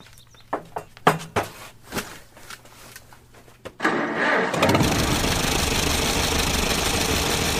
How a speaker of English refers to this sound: It sounds just like an old tractor should. Even when restored.